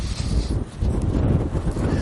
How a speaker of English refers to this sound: Still a bit windy.